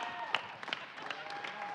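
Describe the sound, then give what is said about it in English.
A church audience stands and applauds to welcome a new pastor preaching for the first time, a dense patter of many hands clapping at once with a few sharper individual claps standing out, steady and moderately loud throughout. “All right, so yeah, let's stand up and just give him a clap.”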